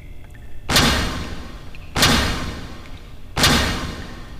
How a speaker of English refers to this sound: As the door opens